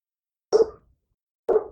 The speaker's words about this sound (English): Dog your dog got the hiccups.